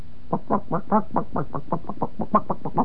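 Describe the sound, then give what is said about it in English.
A person imitates a chicken clucking while it feeds: a quick, steady run of about sixteen short, throaty clucks, moderately loud, with no other talking. “That, by the way, is a feeding chicken.”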